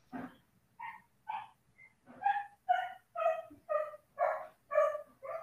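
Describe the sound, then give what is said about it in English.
A dog barks over and over, about ten sharp, high-pitched yips in a quick uneven rhythm, getting louder and more insistent toward the end. “Doggy dog still making some complaints.”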